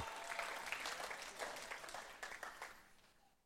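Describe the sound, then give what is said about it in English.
A church audience applauds the Lord with dense, overlapping hand claps, a steady, loud wash of clapping that holds for a few seconds and then gradually thins and fades toward the end. “Give the Lord another hand clap in the house.”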